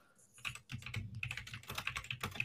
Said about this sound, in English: Ugh, immaculate typing.